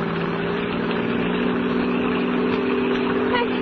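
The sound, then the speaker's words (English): A car engine hums steadily from inside the vehicle, a constant mid-pitched drone with road noise as it drives along at an even, fairly loud level, heading on the road up to Laurel Canyon. “Please, let me out of this car.”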